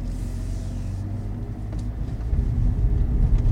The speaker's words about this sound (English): Well, this is a tiny little road. You wouldn't have thought this was the road to Frankfurt, would you? Good job we're in a tiny car.